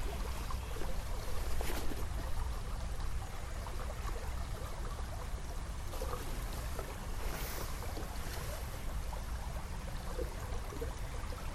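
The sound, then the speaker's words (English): A steady, unbroken wash of flowing river water fills the scene, broad and fairly loud with a deep rumbling undertone and a few brief brighter splashes, no voices present. “Spend a blissful, calming day by the river”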